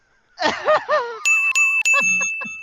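A bell rings with several quick, bright metallic strikes, its high ringing tone sustained between hits, following a brief burst of wavering, voice-like sounds.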